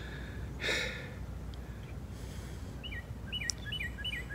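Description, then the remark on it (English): A person practicing their breathing takes a single short, forceful breath, like a deliberate exhale or sigh, near the start, followed by quiet rustling and scattered bird chirps in the background. “I'll breathe. Practice my breathing.”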